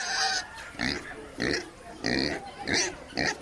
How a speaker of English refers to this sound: How do the pigs respond to being locked up with you? Well, the pigs, it was their daily life. They didn't really mind. They just grunted, snuffled around a bit.